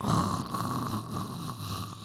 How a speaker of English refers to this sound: And what's that, Mother? The sound of me snoring. Because my mother typically finds it boring. And useless.